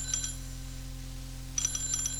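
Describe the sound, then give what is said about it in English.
A shrill telephone bell rings in two rapid, trilling bursts, a brief one and then a longer one after a pause, over a low steady hum with no talking. “Stop ringing, will you? Stop it!”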